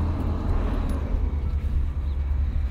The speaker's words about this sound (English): Hello, garbage truck. It's garbage day. Good luck on all your garbage retrieval.